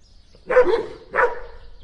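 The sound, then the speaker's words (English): Dogs bark in two loud bursts about half a second apart, with a third bark just starting at the end, over a faint low background rumble. “Get them dogs out of here, man.”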